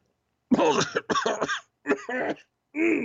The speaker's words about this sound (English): I'm sorry, there's something in my throat. That sounds like you got a cough there.